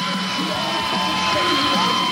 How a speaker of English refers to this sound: Is this in Asheville, North Carolina? Let me check that. Those girls are really cheering for me. Beg your pardon? Beaumont, Texas. 3,500 fans here.